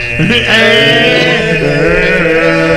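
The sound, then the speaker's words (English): Loud, continuous throat singing: a buzzing, nasal low drone with a bright whistling overtone riding above it. The tone wavers slightly, giving it a goat-like bleating quality, with no talking. “And we start with throat singing.”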